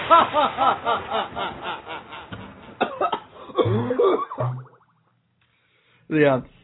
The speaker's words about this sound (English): Gotta work on that cough there.